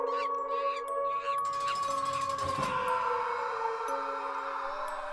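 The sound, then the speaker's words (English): A short musical sting for the 'Bananas Boof' segment, of sustained, droning tones, with a few high, warbling monkey sounds near the start and a brief noisy swell midway; no one talks. “Maybe we can chuck a few monkey sounds in there. That'd be good. So that'd be great. And you'll be hearing that sting right about now.”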